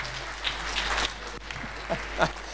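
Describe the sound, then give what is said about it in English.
A crowd gives a volunteer a special round of applause, clapping steadily for a couple of seconds, a dense, even crackle of many hands at moderate volume, with a few brief voice sounds breaking through near the end. “Give him a special round of applause.”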